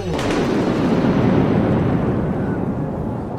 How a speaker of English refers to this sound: Ginny! It's so sandy and windy that I can't see anything.